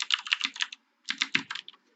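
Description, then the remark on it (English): Crisp computer keyboard typing in two quick bursts of rapid clicking keys, separated by a brief pause, with no voices present. “There's a lot of typing this episode.”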